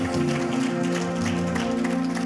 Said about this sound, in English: In the name of Jesus, give the Lord a praise and a clap in this house.